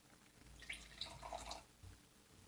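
Wine is poured into a glass, a soft gurgling, splashing trickle lasting about a second, fairly quiet against a faint hush, with no voices.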